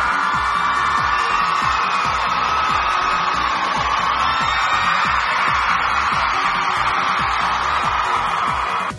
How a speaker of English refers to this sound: But still, £1,700 for charity is amazing, so let's give a round of applause to the SegaFon!